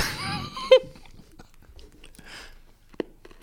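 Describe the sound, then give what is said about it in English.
A brief drawn-out vocal sound, then crunchy chewing of a big forkful of gritty food: small crackling bites at an irregular pace, ending with one sharper crunch. “Ooh. Crunchy. Ooh, crunchy.”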